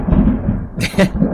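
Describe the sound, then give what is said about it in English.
Loud thunder from a lightning strike during a storm: a deep, continuous rumble punctuated by two sharp, crackling bursts toward the end. “A lightning just struck behind me, and I just shot my collar up and showed my fangs.”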